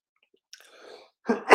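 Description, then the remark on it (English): A single sneeze: a soft, breathy intake followed by a sudden loud, sharp burst of air at the very end, with no talking. “I don't know if I've ever sneezed on camera before.”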